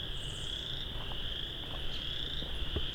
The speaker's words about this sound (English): It's making frog-like calls, though. I think it's a species of tree frog.